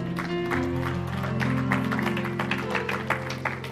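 An audience gives the Lord a hand clap and shouts of praise in a steady burst of applause and voices, layered over sustained, droning keyboard chords that hold throughout.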